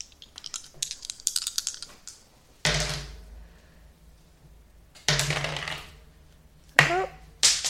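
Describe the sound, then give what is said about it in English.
A burst of rapid typewriter keystrokes clatters up close, followed by three heavy mechanical clunks that each ring on briefly, with quieter tapping between them. “It's not the scariest typewriter in the world.”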